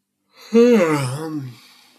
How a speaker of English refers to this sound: Excuse me for the yawn.